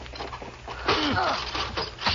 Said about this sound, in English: help me pull this seat the other way.